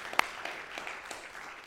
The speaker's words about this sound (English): Yeah, absolutely. We can applaud that.